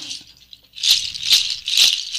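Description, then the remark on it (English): A hooves rattle, an instrument mostly from the Andes, is shaken in three bursts of bright, clattering clicks, each swell of dry rattling rising and fading in a steady rhythm after a brief quiet start. “But primarily the hooves, I think, are very... And the hooves then...”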